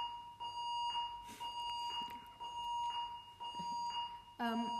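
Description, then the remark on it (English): An alarm bell rings steadily for the whole clip, a sustained shrill tone with an even higher overtone, while indistinct voices and scattered noises come and go beneath it. “There's what I'm talking about, bells and noises all around us.”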